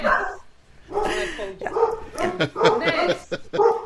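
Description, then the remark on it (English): Household dogs bark in a rapid, excited string of loud yelps and woofs, a few short bursts running together over several seconds, with some whiny yips mixed in. “right now, is not a moment of quiet for the dogs in Sarah's household”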